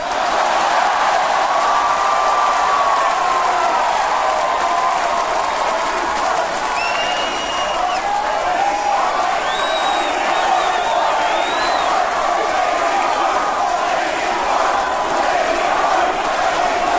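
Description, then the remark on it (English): An arena crowd chants and roars in a loud, unbroken wall of voices, half of it chanting "Rocky" and the other half chanting "lady parts", with shrill whistles streaking above the din now and then. “We got half the crowd chanting Rocky and the other half chanting lady parts.”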